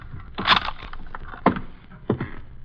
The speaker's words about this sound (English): Nobody here, all right. Shut the door, Louis, and lock it.